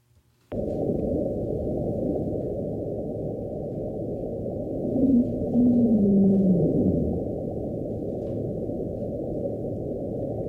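A dense, muffled underwater rumble runs throughout, and midway a low, drawn-out tonal moan glides downward for a couple of seconds before fading back into the steady noise, like a distant whale call.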